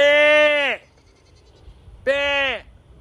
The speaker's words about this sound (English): Get some more goats, please.